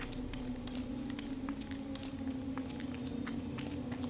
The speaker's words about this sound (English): This is going to be it for the next 2 minutes. It's just going to be the soggy footsteps of Sarah. Poor Sarah.